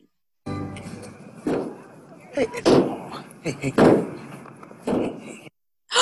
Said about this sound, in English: Tackleberry banging his head on the truck. On the hood, yeah.